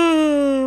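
A person yawns aloud, a loud, close, voiced moan that holds steady and sags slightly in pitch over under a second, with no talking around it.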